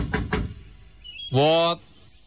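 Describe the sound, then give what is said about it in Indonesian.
Two quick, solid knocks on a door, followed after a brief pause by a short voiced exclamation. “Ketok, diketok.”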